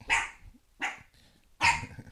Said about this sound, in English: Hold on. I'll be right back. Well, that damn dog.